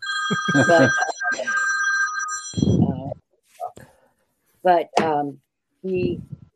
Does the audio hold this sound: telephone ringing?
yes